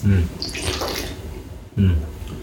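Sipping Schweppes Infused Natural Mineral Water with a hint of raspberry, zero sugar, from a bottle: a soft slurp and gurgle of liquid, with a short gulp at the start and another about two seconds in, fairly loud.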